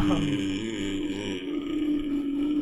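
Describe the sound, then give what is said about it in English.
A person makes a low, rasping growl by breathing in while speaking in a low voice, a sustained guttural rumble lasting a couple of seconds, imitating a monster's menacing call. “Now, I just discovered it's really easy to make horrifying noises if you breathe in and try and speak with a low voice.”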